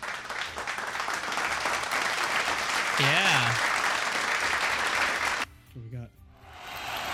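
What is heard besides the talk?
applause sound effect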